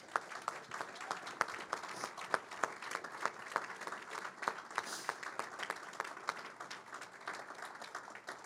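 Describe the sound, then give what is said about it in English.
Sustained audience applause, a dense wash of many hands clapping with sharp individual claps standing out, steady and fairly loud throughout with no talking. “Please give these guys the biggest round of applause.”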